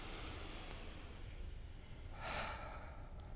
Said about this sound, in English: Yeah, the deep breathing is something I enjoy doing with my patients when I'm talking about it. You know, let's just do it all together once.